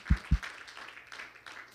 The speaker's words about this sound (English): Can we give these musicians and singers, amen, a hand clap of appreciation today? Hallelujah.